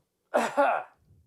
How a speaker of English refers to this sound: He tried to cover up his burp with a cough. I failed.